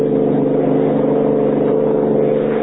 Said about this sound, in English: Finding Lois and the bill of sale missing, he and Kelly give chase in a high-powered car.